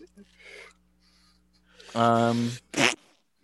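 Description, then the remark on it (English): A single sneeze by someone holding M&Ms, the saliva going out to the side: a loud, drawn-out voiced 'ahh' building for about half a second, then a sharp, breathy burst. Faint murmuring and low hum sit underneath beforehand. “I really didn't want to spit on my M&Ms when I sneezed.”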